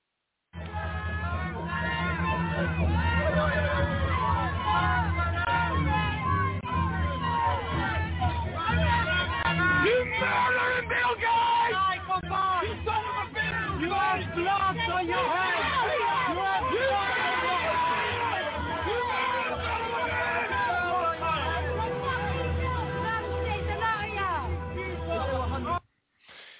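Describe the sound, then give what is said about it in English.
A loud, dense crowd shouts and jeers continuously in a street in the United Kingdom, surrounding a car with Bill Gates inside, many voices overlapping for about twenty-five seconds with occasional sharper cries rising above the din. “Inside of the car in the United Kingdom in the street is Bill Gates. And the crowd is surrounding the car.”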